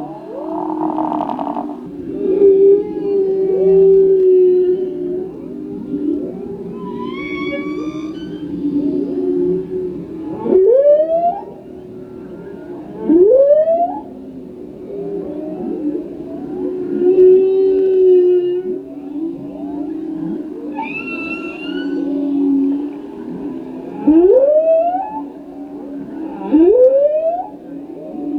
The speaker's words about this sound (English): If you've never heard the sound of humpback whales singing, we've got a song from a pod off the coast of Maui.